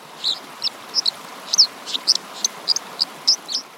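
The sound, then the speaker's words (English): An American Dipper sings a loud, bright song of quick, high, repeated notes in an irregular rhythm, carrying clearly over a steady wash of background noise like rushing water. “So like the Dipper, for example, has a really loud song, so you can hear it over the sound of rushing water.”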